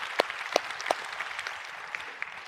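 A crowd claps in a dense patter of many hands, with a few sharper, louder claps standing out at irregular moments. No one speaks.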